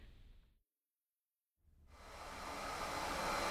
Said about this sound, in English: Will you please stop hoovering? I find it therapeutic. For 3 hours?